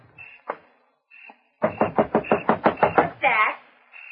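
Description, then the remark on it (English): A rapid series of about nine loud knocks on a front door, evenly spaced and insistent, preceded by a couple of isolated taps and ending with a brief louder rattle. “Somebody at the front door.”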